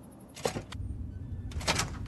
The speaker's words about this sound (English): That's the door out.